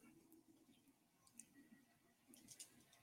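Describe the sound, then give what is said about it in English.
A few soft, quick plastic clicks from the big center button of an Xbox game controller, quiet, spaced irregularly over a low steady background hum with no talking. “The big center button. Oh. I'm clicking that.”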